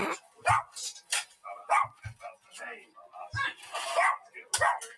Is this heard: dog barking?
yes